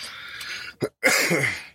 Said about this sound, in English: Sorry about that. I apologize for coughing today.